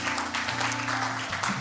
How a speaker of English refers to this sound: We can clap for that. We can clap for that.